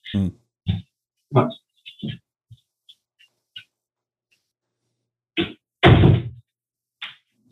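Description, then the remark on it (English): A door being opened for a dog: a series of short, sharp thumps and knocks, a few faint clicks, then a louder, broader bang and scrape before one last small knock. “Hold on, I'm going to open my door for my dog.”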